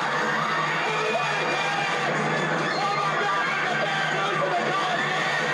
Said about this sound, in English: If, for those of you who didn't recognize that soundbite, that's from the movie Semi-Pro. That's Will Ferrell screaming around, everybody panic, there's a bear loose in the Coliseum.